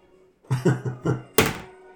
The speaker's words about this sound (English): You kick in the door, and Nemea goes flying.